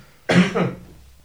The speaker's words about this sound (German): Hast du den Jetlag husten? Ein Ricola. Mach mal ein Ricola.